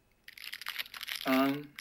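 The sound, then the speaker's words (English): Close, crackly crinkling of a plastic snack wrapper, loud and irregular for well over a second, with a brief voiced sound cutting in near the end. “Well, I want you to stop crumpling that thing next to the microphone.”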